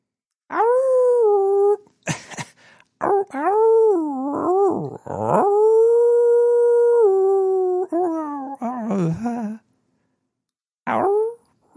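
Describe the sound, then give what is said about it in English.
A person imitates a dog, howling in long, wavering, up-and-down cries that rise and fall in pitch, loud, with brief pauses and a short final howl. “When I get 420s, I start to howl.”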